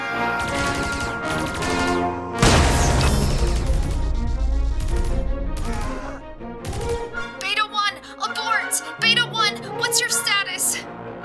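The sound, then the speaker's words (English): Loud, chaotic bursts of rapid gunfire and crashing noise fill the first half, followed by frantic shouting or screaming voices over continued clatter, all intense, as Beta team breaches Deck 6 in a bloody massacre. “The feed from their helmet cams had gone dark, and all that could be seen prior to the gunfire starting was blackness.”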